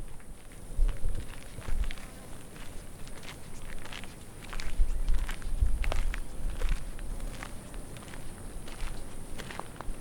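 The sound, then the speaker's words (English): Steady footsteps crunch along a gravelly river path alongside the River Corrib, a regular walking rhythm of soft thuds and scuffs over a constant low background hiss, with no one speaking. “So we're walking along the river path adjacent to the River Corrib.”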